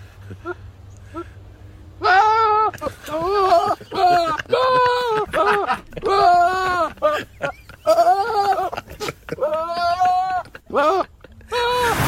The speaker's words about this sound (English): a clip, I think it's also from America, of a goat that sounds like Will Ferrell in distress